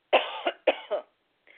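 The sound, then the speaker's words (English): Two harsh coughs in quick succession, each a sharp burst followed by a shorter rasping catch, with no talking around them. “just hang on, I want to cough.”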